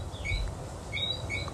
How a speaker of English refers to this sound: That is actually a whistling frog.